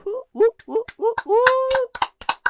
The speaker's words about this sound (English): Yes, man. We gotta clap for this, man. Yeah. I would have never expected that we hit 500 downloads plus more.